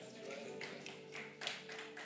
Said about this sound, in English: That's worth a hand clap.